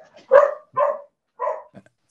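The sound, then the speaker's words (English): Dogs bark while running through a house: three loud barks at an uneven pace, followed by a couple of softer short yips. No one speaks. “So yeah, no, this is dogs running through the house.”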